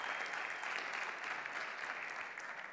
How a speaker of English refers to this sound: Amen. You can clap.